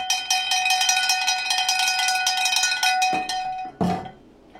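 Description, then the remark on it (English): A cowbell is struck in a fast, steady rhythm for about three seconds, its bright metallic clank ringing loudly, then a couple of heavier final hits before it fades out. No voices. “I got a fever. And the only prescription is more cowbell.”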